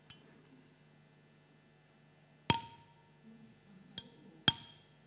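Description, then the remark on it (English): A drinking glass with small clips attached is struck three times, each a sharp bright clink with a short, slightly dulled ring, the last two close together, over a faint low hum. “I'm just going to put a couple of clips on this glass and I'll strike it again.”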